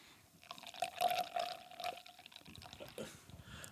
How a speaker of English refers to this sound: You just pour. Yeah. Give it a nice pour.